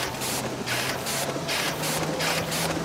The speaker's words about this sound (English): This is real techno, you know, the sound of a machine. All my life as a printer, I was thinking about maybe I should drum with a machine, you know.